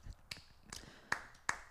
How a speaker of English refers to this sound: There you go, your little clap. Good job, boys. Golf claps.